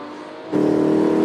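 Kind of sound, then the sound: vehicle, car engine accelerating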